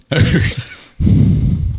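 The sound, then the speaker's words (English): A person breathes heavily into a microphone on request: two rough, gusty rushes of air, the first longer and harsher, separated by a brief pause. “I hear the breathing.”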